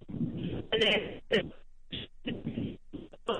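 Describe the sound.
A caller's voice on a phone line keeps breaking up, band-limited and choppy, cutting in and out with sudden dropouts and bursts of garbled sound.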